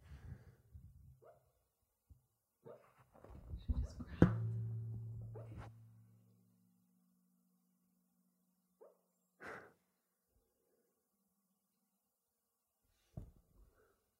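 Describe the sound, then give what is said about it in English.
A dog named Peach, dreaming in her sleep, lets out a low, rumbling growl lasting a couple of seconds, followed by a few faint, scattered muffled huffs and snorts amid quiet pauses. No one speaks. “Oh, she's growling.”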